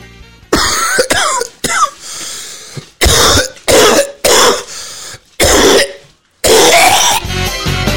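A person coughs hard after a hit of weed, a harsh, raspy series of about eight loud bursts with short gasping pauses, ending in a longer, rougher coughing fit. No one speaks.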